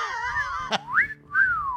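A person whistles a short tune up close, with a sustained wavering note, a brief sharp click, then two sliding rising-and-falling phrases.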